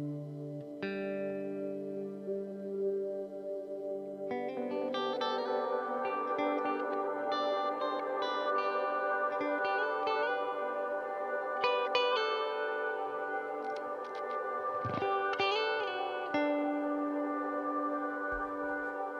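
Sustained electric guitar notes ring out through an echo effect, layered chords and repeating tones blending into a dense, shimmering wash, steady and fairly loud with no voices.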